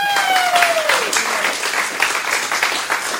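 Steady crowd applause fills the whole clip, a dense wash of clapping hands with no talk, opening with a brief descending tone that fades out in the first second.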